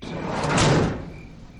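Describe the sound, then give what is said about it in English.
A heavy van sliding door rolls along its track and shuts with a broad whooshing rumble that swells and fades over about a second, with no voices. “Elk slid the van door closed and sat next to Macy on the seat in front of me.”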